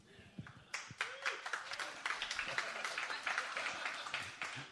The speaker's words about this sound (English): Man, you know it's going to be good. Some people are already clapping. It's great.